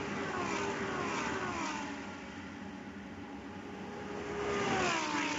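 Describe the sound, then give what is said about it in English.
A Lamborghini Super Trofeo race car engine roars continuously at high revs on the long back straightaway at Road Atlanta in 2020, its pitch sliding down and then climbing again as it powers along, loud and steady with no voices. “Lamborghini Super Trofeo 2020: Road Atlanta”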